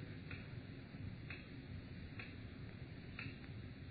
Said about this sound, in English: So quiet. I could hear the clock ticking away the seconds.